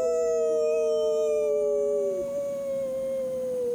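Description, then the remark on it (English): Two people howl together like wolves on a count of three, in long, sustained wails, one gliding slowly downward in pitch while the other holds steady, loud for nearly four seconds. “All right, so howl like a wolf on three.”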